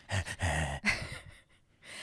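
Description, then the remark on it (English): A voice imitates heavy breathing on a phone call: a few loud, rasping breaths and gasps in quick succession, then a softer exhale trailing off, with no words spoken. “So back at the house, the phone rings and we get a lot of heavy breathing.”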